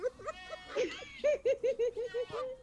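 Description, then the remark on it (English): A goat bleats in a goat pen in a rapid, wavering series of nasal cries, loud and stuttering, with a few separate bleats before it; no clear talking. “Can y'all get out of the goat pen?”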